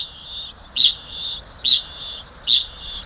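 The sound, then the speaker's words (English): A kakapo, a flightless parrot from New Zealand, gives three sharp, high-pitched metallic calls at a steady pace, each rising out of a continuous shrill trilling drone. There is no talking. “New Zealand is home to some very unusual birds, the kiwis, for example. But none is more peculiar than the kakapo.”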